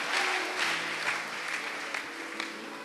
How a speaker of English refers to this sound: Premier bâtiment achevé. Acclamons le Seigneur. The first building that's complete. Let's clap for the Lord.